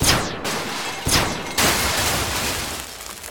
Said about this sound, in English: Okay. We should be all right. Simple blaster rig for when the door opened.